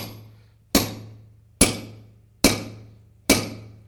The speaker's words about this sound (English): But it had to be a pretty good-sized hammer to drive a pretty good-sized nail. Right? They felt that hole in his hand and felt that thing, and then they begin to hammer it in.